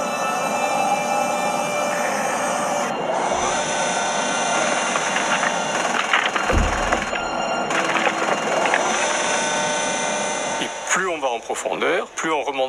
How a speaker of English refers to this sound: The rover will search for life in the ground. Protected from lethal radiation under the surface, microbes could still be alive. This is the first time in history that a Mars rover will drill 2 meters deep into the planet.